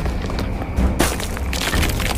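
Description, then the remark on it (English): An already cracked stone gargoyle, over 800 feet up, cracks and breaks apart as the Joker kicks it, in a sudden sharp crunch about midway, with low thuds and gritty crumbling before and after. No voices are heard. “He began kicking the already cracked structure, and it started to break.”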